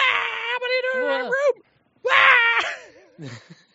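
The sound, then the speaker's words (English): A young woman screeches in two loud, high-pitched, wavering bursts with a short pause between them, then trails off into a fainter, shaky cry, as she is startled by someone who has come into her bedroom. “The most, like, screeching, enthusiastic, freaked out, vocal young lady flips out and turns on the light.”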